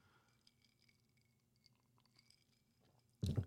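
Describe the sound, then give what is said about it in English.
Soft mouth sounds of someone sipping a drink and swallowing, quiet and wet, followed by a sudden loud burst right at the end. No one speaks. “It's a wonderful sip.”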